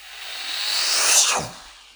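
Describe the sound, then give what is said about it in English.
A voice imitates a jet airplane whoosh to introduce the movie Top Gun: Maverick: a breathy, hissing rush that swells steadily for over a second, peaks, then sweeps downward and fades. No talking accompanies it. “You like that airplane noise?”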